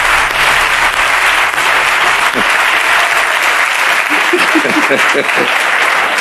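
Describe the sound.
Loud, steady applause from a crowd fills the whole stretch, a dense wash of clapping, with brief voiced calls or cheers rising through it toward the end.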